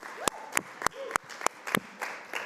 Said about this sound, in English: I want to thank those who went to Oregon Kids Convention. Thank you for serving our children. Let's give them a round of applause, can we?